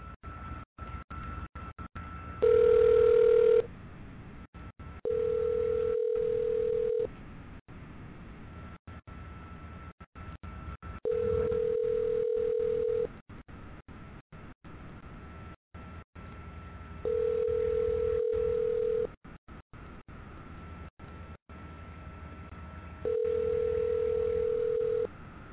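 An outgoing phone call to a friend rings through a receiver unanswered before reaching voicemail: five steady, two-second ringback tones spaced evenly about six seconds apart over faint line hiss, with no one speaking.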